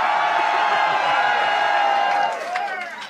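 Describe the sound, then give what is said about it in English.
A large crowd screams and cheers for four more years of Donald Trump in a loud, sustained roar of high-pitched voices that holds steady for over two seconds, then starts to fade with a few scattered whoops. “If you want four more years of Donald Trump, let me hear you scream.”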